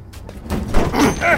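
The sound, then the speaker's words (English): A key card opens the door to infected management: a short mechanical clunk and rush of movement, ending in a brief electronic chirp. Fairly loud, with no talking. “a damn key card will open the door to infected management.”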